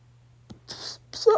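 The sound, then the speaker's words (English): A slow yawn, fairly quiet: a long breathy intake of air, a brief pause, then another breathy rush that ends in a short voiced groan. “That is a slow yawn.”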